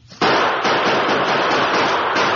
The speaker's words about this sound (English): We'll have to return the gunfire.